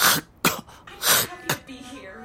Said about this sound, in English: It's still in your throat. Cough twice more.